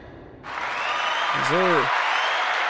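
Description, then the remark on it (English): Applause breaks out suddenly and holds steady as a dense, loud wash of clapping, with a short rising-and-falling vocal whoop cutting through partway in. “Let's clap it up. Let's clap it one more time.”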